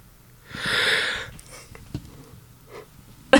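A long, breathy yawn swells and fades over about a second, followed by a few soft breaths and small mouth clicks, with a sharp click at the very end.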